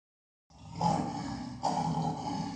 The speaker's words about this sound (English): So Mufasa saves the day. Here's Mufasa's roar.